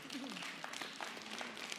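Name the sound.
tepid audience applause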